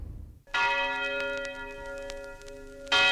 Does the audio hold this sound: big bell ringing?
yes